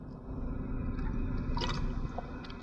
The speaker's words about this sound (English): The little bit of water that is still in my water bottle.